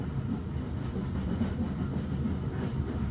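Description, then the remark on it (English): Steady rumble of the steel wheels of the Hogwarts Express steam train rolling along the track past the end of platform 9 3/4, a dense low-pitched roar with faint rhythmic clicks, continuous and even throughout with no voices. “No echo of the steel wheels on the track.”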